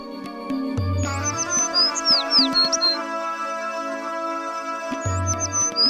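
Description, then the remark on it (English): A bird chirps loudly and rapidly in a string of bright, sweeping high tweets, set over a steady layered musical hum with a few soft knocks. “You finally see them and chirp as loudly as you can to signal to the prince that you'd found them.”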